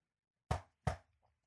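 Two firm, fairly loud knocks on a door, spaced about a third of a second apart, each with a short woody decay, followed by silence.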